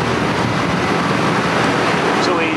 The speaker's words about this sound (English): Load through the retort into the oil quench and then to a wash. Okay. This is a spray washer. Spray wash, okay.